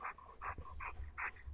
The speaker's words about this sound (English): I can hear a very loud dog panting into your... Oh, that's Brody.